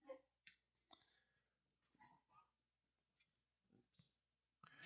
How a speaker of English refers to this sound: All right, I'm typing in amazing beach scene.